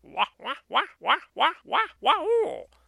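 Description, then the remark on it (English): A human voice imitates a barred owl's laughing call: six quick, evenly spaced rising-and-falling hoots, then a longer, wavering drawn-out final note before it stops. “Well, the barred owl, a lot of times when they're calling, they will make a sound that sounds like a laugh.”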